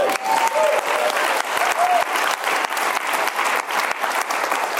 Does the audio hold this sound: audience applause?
yes